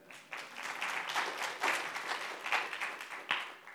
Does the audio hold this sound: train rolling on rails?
no